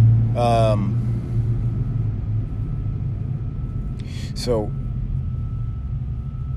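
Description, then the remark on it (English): A deep, steady engine rumble from a Corvette sports car driving past holds throughout, loud and low, with a man briefly speaking over it. “Here comes this guy in the Corvette again.”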